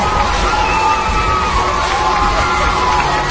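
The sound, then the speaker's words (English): A large crowd of Catholic students, teachers and elders in a church worship center cheers and shouts continuously as a drag queen comes down the center aisle, a dense, loud roar of voices with scattered higher whoops rising above it throughout. “Listen to this crowd.”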